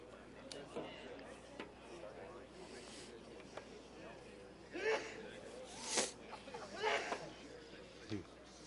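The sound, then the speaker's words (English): A sharp sneeze bursts out over a background of murmuring group chatter, with a couple of smaller breathy sounds. “bless you.”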